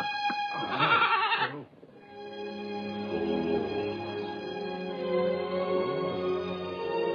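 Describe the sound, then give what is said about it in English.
A goat bleats loudly, a harsh wavering cry lasting about a second, followed by a long drawn-out, quavering bleat that trails on for several seconds. “What that goat needs is a good saying to.”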